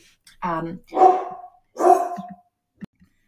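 A dog barks three times in quick succession, loud, each bark harsh and drawn out, followed by a brief soft yip near the end.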